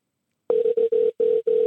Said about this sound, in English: Oh. So we're ringing. Sounds very old-timey ringy. That's cool.